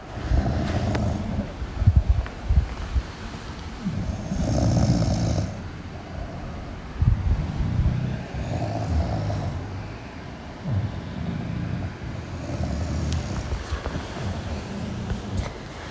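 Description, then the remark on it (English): Heavy, rumbling snores repeat in a slow rhythm, overlapping as if from two sleepers, a woman and a bulldog, with steady background noise and no talking. “It's snoring.”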